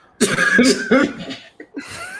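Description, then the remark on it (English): A person puts on an exaggerated fake cough, a few voiced, throaty bursts in quick succession, fairly loud, ending with a softer trailing hack. “Just say you're sick. COVID. Cough, cough.”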